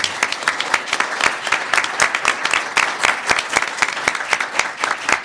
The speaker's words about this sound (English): I'd like first a round of applause for our panel.